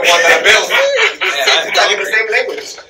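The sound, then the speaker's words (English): A person imitates chicken clucking with their voice, a quick run of choppy, nasal bursts lasting a few seconds, fairly loud. “Give them chickens.”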